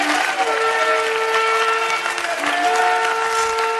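Steady, buzzing vuvuzela drones hold several overlapping pitches throughout, blaring loudly over a constant roar of crowd noise and cheering.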